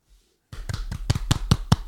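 After a brief silence, a run of about seven sharp hand claps follows at a steady, quick pace. The claps grow slightly louder toward the end, with no one talking.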